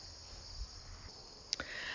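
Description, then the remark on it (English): Crickets chirp loudly and continuously in a steady high-pitched drone, with a sharp click partway through and faint low rumbling underneath; no one speaks. “Hear how loud the crickets are.”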